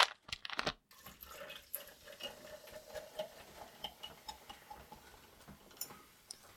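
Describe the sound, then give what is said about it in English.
Diet Coke poured from a 2-liter plastic bottle: a short burst of splashing glugs, then a steady fizzing crackle of bubbles that lingers for several seconds, with no talking. “Takes the 2 liter of Diet Coke, pours the 2 liter of Diet Coke, and, like, waits for me”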